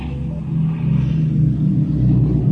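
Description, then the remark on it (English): A steady, loud drone of the engines of a de Havilland Mosquito, a World War II aeroplane: a deep throbbing rumble with layered low tones that holds without a break for a few seconds, no voices present. “This is one of the most famous aeroplanes of World War II, the de Havilland Mosquito.”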